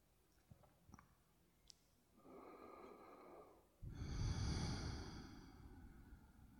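A slow, deep breath: a soft, airy inhale, then a longer, louder, rushing exhale that slowly fades. A few faint clicks come before it, and no one speaks.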